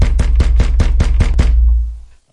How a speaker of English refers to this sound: I bet you this is him. I'm telling you. Oh, that's his knock when he's really aggravated. I think he wants to comment on his opinion. He's going to break the door.